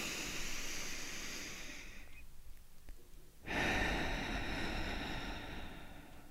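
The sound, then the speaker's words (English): A long, airy inhale lasting about two seconds, a brief pause, then a fuller, louder exhale that trails off slowly. Broad, breathy hiss with no voice present. “But first, let's take a deep breath in and a deep breath out.”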